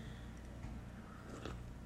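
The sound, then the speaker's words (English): A quiet sip of hot herbal tea, a short wet slurp over a steady low hum, with no one speaking. “Sorry, I'm sipping my herbal tea here.”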